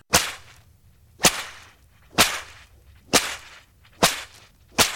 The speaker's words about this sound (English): Everything seemed to open on us at once, rifles, machine guns, artillery, etc. The noise was deafening. The rifle and machine gun bullets made a noise like a stock whip being cracked in one's ear as they passed.